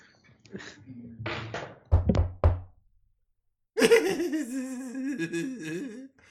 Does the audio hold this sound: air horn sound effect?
no